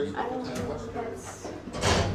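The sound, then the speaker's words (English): During a rescue of people stuck in an elevator, the elevator door swings open with a broad, scraping whoosh near the end, following a stretch of voices talking and murmuring. “I got the door. Okay. Open.”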